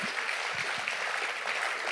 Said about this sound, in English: Come on, give him a clap right now.